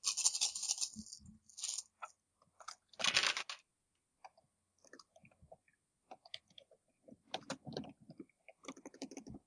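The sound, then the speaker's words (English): A cat stepping across a computer keyboard, setting off irregular clusters of clacking keys with a few louder, crunchy bursts and short pauses in between; no one speaks. “Okay, whoa, cat, you do not get on the keys.”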